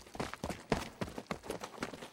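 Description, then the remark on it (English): Dense, overlapping footsteps from many people moving at once, a steady irregular patter of shoe impacts with no talking: Foley footsteps performed by Foley artists to picture for the crowd at Helm's Deep. “All that movement of all those people. Footsteps.”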